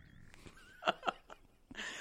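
A woman lets out a short, throaty growl in two quick rough bursts, moderately loud, followed by a breathy rush of air.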